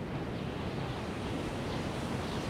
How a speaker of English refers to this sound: And all of a sudden then, we start to hear a lot of wind, a lot of really heavy, loud wind.